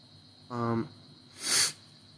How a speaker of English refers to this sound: Anywho, for like the third time, now I've done blowing my nose